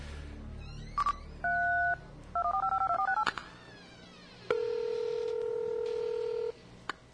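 In a car, a phone number is dialed on a keypad to call an old partner: a short beep, then a quick run of electronic touch-tone beeps, followed after a pause by a long, steady ringing tone. No one speaks.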